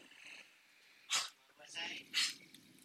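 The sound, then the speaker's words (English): A female dog hacks and retches, two harsh, raspy bursts with wheezy gagging in between, as she tries to cough up Hamburger Helper she was fed. “She's trying to expel the goddamn hamburger helper out of her system because it's finally gotten to her.”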